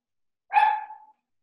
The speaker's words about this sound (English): That's gotta be like a little tiny like Boston Terrier or like miniature poodle. Ah, okay. Yeah, you got it. You can tell in the bark. It's like that such a pitch squeal of a bark. The yippy, yeah.